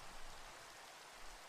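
Rain falling in a steady, unbroken hiss, soft and even throughout, with no voices or other sounds over it.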